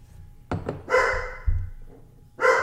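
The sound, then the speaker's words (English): A half German Shepherd mutt named Phoebe barks loudly on a farm, a couple of sharp barks with a brief thump between them, no one speaking. “You want to bark? Go outside.”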